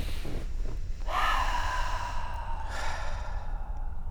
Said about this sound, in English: Let's stop and breathe for a moment. Let's do that.